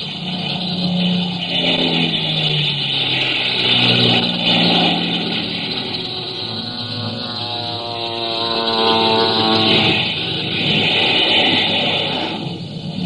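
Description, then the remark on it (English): Planes of a new air squadron launching one by one from an aircraft carrier's flight deck: a loud, steady engine roar with two surges where the pitch climbs as engines rev up, over a constant hiss of wind and exhaust. “One by one, we got our planes in the air.”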